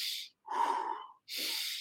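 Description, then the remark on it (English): Three forceful, rushing breaths in quick succession as a breathing exercise, a sharp hiss, then a louder, rougher breath, then another hiss, loud with brief gaps between them and no talking. “A big thing is sometimes you have this, not anxiety, for some people anxiety, but it's all this energy and you need to release that before you go in front of the camera. So I've done breathing.”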